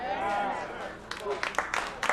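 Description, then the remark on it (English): A man's voice trails off, then a few scattered, uneven claps break out from a small audience, sharp, with a brief burst of several hands near the end. “You don't have to clap.”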